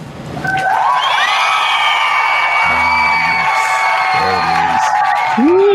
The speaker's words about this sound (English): There it is. That glorious, glorious applause.